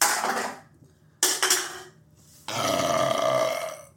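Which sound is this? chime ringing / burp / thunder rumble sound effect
burp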